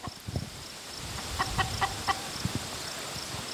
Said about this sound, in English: Now, these ladies, they're two-legged and they have these red combs. They're chickens. They're coming towards us.